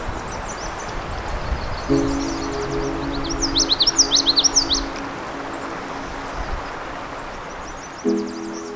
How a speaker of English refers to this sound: For now, let's just sit and listen to the morning songs of these songbirds. Some of them migrants, some of them on breeding territory.